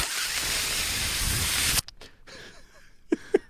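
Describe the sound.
A voice imitates a Dyson Airblade full-body hand air dryer with a loud, steady, breathy roar of hiss lasting about two seconds. It cuts off abruptly, followed by faint breaths and a few soft clicks.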